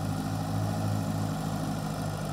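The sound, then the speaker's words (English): A small farm tractor, the '74, with about 4,000 hours on it and used weekly to mow the yard, idles steadily, a low, even rumble with a constant throbbing hum and no change in pace, heard on its own without any voices. “They're just handy little tractors.”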